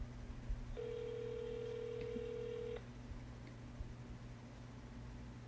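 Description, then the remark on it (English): A single ringback tone sounds on an outgoing phone call, a steady electronic buzz lasting about two seconds before cutting off into quiet line hiss, with no one speaking. “Awkward silence for the phone ringing.”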